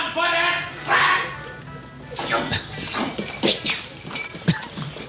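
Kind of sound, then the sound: animal, dog barking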